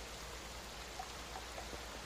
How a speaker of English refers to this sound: So as a lot of you, do you go outside into the thunderstorm as the tint changes from green to just gray?